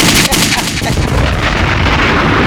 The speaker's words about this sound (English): You got gunshots and a bomb.